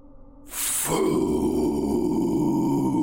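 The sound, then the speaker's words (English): A deep monster growl breaks in with a sudden hissing roar, then settles into a loud, sustained guttural rumble that keeps going to the end. No one speaks. “The thing growled, and its face opened into four large flaps.”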